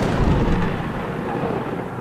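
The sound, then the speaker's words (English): A loud lightning-style thunder crack that rolls into a dense, sustained rumble, filling the whole couple of seconds with no one speaking over it. “So you open up your mouth and this beam of lightning just bolts, just arcs around and hits this thing in the chest, and you just see like a small chunk of rock pop out.”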